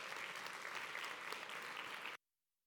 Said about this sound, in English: And you can clap. That's okay.